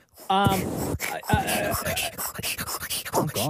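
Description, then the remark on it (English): A voice imitates sawing wood with a quick series of breathy, rasping back-and-forth strokes, preceded by a short voiced sound. “You're using a saw. Sawing wood.”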